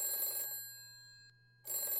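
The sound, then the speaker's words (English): An old-style telephone bell rings in a bright, rattling burst, falls silent briefly, then starts ringing again. It sounds clear, with no one talking over it. “You should never meet your heroes, but you can phone them.”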